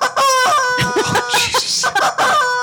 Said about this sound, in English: Screaming chickens. That's the Dornax chicken. You heard it here.